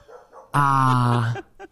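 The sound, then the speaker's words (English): A dog lets out one loud, drawn-out bark, almost a howl, lasting under a second, with faint voices murmuring just before it. “That dog heard us.”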